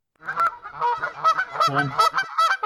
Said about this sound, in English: That's a swan. Geese. What? Isn't it the same thing? I mean, almost. Big bird.